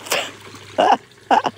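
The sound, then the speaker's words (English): A dog splashes through water at a ford in three short, separate bursts of churning spray, each loud, with quiet pauses between them. “We're at the ford, and of course the dog has gone in.”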